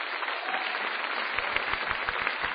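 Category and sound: crowd, audience applause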